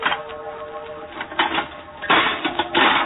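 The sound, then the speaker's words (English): A stone strikes an old, rusty lock on a tomb door, smashing it: a soft clink followed by two louder, harsh clanks with a rattling metallic edge, each blow ringing briefly before the next. No one speaks. “I picked up a stone.”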